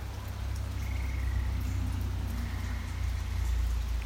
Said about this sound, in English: I'm fortunate enough to be sitting close to a pond as well. and you can hear the bullfrogs croaking.